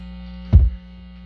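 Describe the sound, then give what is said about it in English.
A Dorchester solid state guitar amplifier, with a Strat guitar plugged in, gives off a steady, low electrical buzz with layered harmonics, broken once partway through by a brief, dull low thump before the hum settles back. “I mean, it's got that solid state buzz, that's for sure.”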